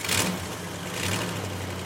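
Ricky's pickup truck engine starts up and rumbles steadily, a low idling drone with a brief surge at the very start and no voices over it.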